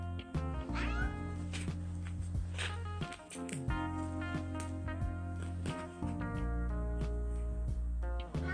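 A cat meows loudly, a string of drawn-out, wavering cries running nearly continuously over a steady low background hum, with no one talking.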